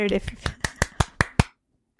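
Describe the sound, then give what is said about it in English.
A quick run of about seven sharp hand claps, evenly spaced, used as a marker for editing a recording, follows a brief bit of voice at the start, then stops abruptly into silence. “I did the class, and the claps mean I edit everything out before.”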